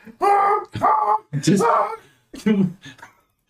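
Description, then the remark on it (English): A goose gives four loud, harsh, nasal honks in an uneven rhythm, each call strained and wavering as if distressed, with brief silences between them. “Well, that's distressed honking sounds.”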